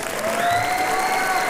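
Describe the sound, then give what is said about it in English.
An audience applauding the Concert Band, a dense, steady wash of many hands clapping at even loudness throughout, with a thin sustained whistle-like tone running above the clapping. “big hand for Concert Band.”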